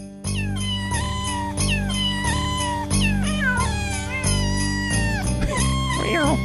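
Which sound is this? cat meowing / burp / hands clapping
cat meowing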